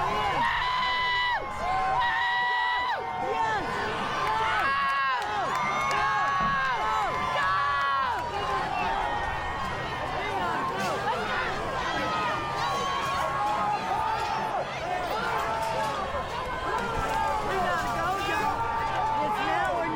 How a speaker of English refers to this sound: After some agitators haggle the crowd, it begins to escalate. Barriers are torn down as people rush the Capitol Steps. Listen to them.